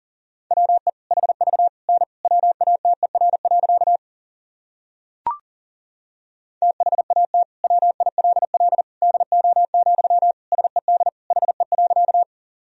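Fast Morse code at 40 wpm: a steady, mid-pitched beep keyed in rapid dots and dashes, sounding in two long runs separated by a silent pause broken by a single click.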